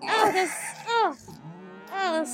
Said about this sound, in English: Don't let the sounds coming from our cows fool you. Those are moans of steadfast, upstanding morality, not of pleasure.